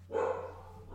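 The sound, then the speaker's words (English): A single pet dog bark, short and somewhat muffled, rings out and fades quickly over a low steady background hum. “Sorry, my dog is barking still.”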